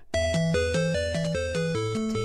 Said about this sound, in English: Should we have a quick listen to some of the Tetris music?